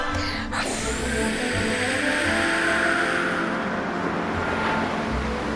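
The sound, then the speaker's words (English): A loud, steady roar of rushing water swells and surges without pause, like big ocean waves breaking and churning, with no voices. “There's a big giant wave. And it can go higher.”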